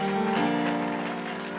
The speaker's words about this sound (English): Come on, clap your hands in this house if you believe it.